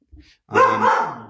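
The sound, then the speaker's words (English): A dog named Banjo gives a single loud bark that rings out for nearly a second, preceded by a brief soft huff. “Banjo, quiet.”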